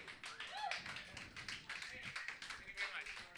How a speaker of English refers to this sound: That was really fucking nice. You don't clap for shit. They clap for this shit.